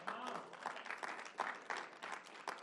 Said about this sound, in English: I think about our 6 or 7 new superheroes last week. Let's clap it up for them.